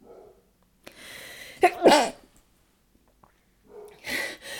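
A sharp inhale builds into a loud human sneeze with a voiced "choo", followed after a short quiet pause by a second forceful sneeze-like burst.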